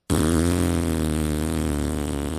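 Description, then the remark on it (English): A voice blows a long, loud, buzzing raspberry that imitates a fart, holding a low, rattling tone steadily for about two seconds with no talking. “Were you making fart noises?”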